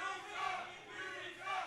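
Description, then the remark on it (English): A large crowd at a wrestling event chants in unison that the wrestler sucks, a jeering taunt rising and falling in steady rhythmic swells, with many voices blending into a dense roar that fills the whole moment. “Hey, he may suck, like the crowd says, but he essentially sucks.”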